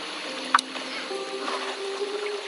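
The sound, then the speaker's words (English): A boat drifts with the current on open water after its engines are cut, with a steady wash of water noise and a low, lingering hum underneath. One brief knock sounds early on, and no one speaks. “Go ahead and cut the engines. We'll drift with the current for a while.”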